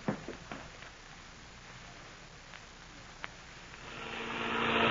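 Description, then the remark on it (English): A few sharp clicks and knocks, then a broad airplane engine roar swells steadily louder over the last second or so, droning as the plane cruises at 10,000 feet over an airport, throttled down. “Now, keep the ship cruising at 10,000 feet over the airport.”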